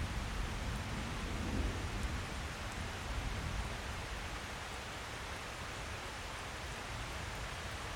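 Steady rain pours down in a dense, continuous hiss with a soft low rumble beneath it, even and unbroken throughout, and no voices can be heard.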